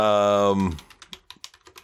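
A short voiced sound gives way to a rapid, uneven burst of frantic computer keyboard typing, about a dozen crisp keystrokes clattering in quick succession.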